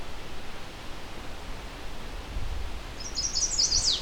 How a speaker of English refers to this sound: It's a fairly abbreviated version. This bird may be migrating and may be on territory. The territory's okay for it.